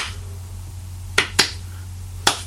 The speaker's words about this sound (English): he shows his approval by assaulting the idea of rhythm because he just claps. But, yeah, it's like, you know, we all know what 4/4 timing is or whatever else, yeah, but this is James's idea of clapping for rhythm.